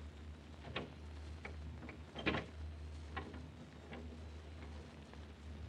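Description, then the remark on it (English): A door opens after its lock is turned, with a series of soft clicks and knocks, the loudest a sharp latch-like clack in the middle, over a steady low hum with no voices. “The lock turned, Inspector. I'll open the door.”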